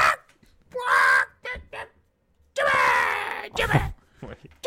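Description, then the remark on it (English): Harsh, screeching caws of a demon bird ring out loud: a short burst, then a longer, strained squawk, followed by a few choppy shrieks trailing off. “And you remember that demon bird from a couple episodes back?”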